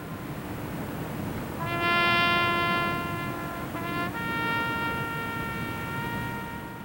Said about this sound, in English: The 75th anniversary event in 1998 was more public. That's what you're hearing here. A trumpet played at the base as a helicopter flew over, dropping a wreath into the ocean where the accident occurred.